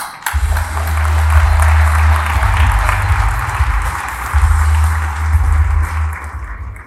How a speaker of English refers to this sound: And a round of applause